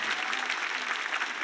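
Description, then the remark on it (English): A church audience claps together as a clap offering to God for its members aged 40 and below, dense, steady applause, many hands blending into a continuous bright patter with no break and no voices standing out. “Come on, those of us above 40, let's give God a clap offering for every one of them.”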